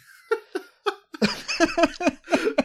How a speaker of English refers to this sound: Oh, Jesus, I gave myself the hiccups.